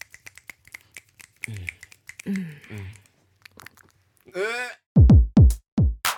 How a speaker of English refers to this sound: Clap, rub hands.